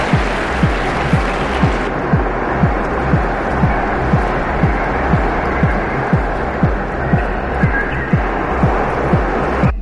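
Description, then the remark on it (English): A large crowd roars and applauds in a dense, continuous wash of noise, with a steady rhythmic thumping like unison clapping or stomping running underneath throughout, cheering as Ted Danson is announced winner of best performance by an actor in a television series, musical or comedy. “Best performance by an actor in a television series, musical or comedy, Ted Danson, cheer!”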